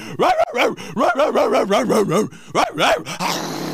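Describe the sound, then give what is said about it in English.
A person imitates a pack of dogs rushing downstairs on Christmas morning, letting out a rapid, excited string of loud yelping barks and whines, ending in a breathy rasp. “Then we go downstairs like a pack of dogs.”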